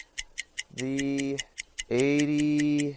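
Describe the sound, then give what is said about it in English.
A steady, quick ticking of a clock runs throughout, crisp, while two long droning tones swell up underneath it, one after the other. “is going to start the clock.”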